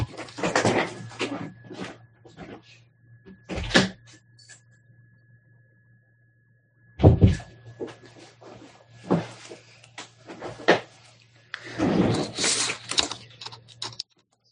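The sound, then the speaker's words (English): A door is opened to let a cat out of the room: rattling clicks and a few sharp thuds as it opens and closes, with scattered shuffling between them over a steady low electrical hum. No one speaks. “And excuse me, I have a creature who's wanting to get out of the room.”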